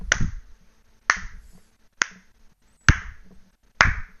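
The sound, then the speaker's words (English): Five slow, deliberate, sarcastic hand claps, evenly spaced about a second apart and fairly crisp, with quiet pauses between them and no talking. “It's like sarcastically clapping in his face”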